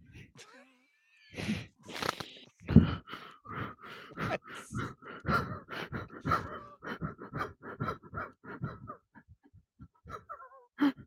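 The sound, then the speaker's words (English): Heavy, rapid panting into a microphone, a steady run of breathy huffs that stays loud for several seconds before trailing off, with no talking. “You just listen to that panting.”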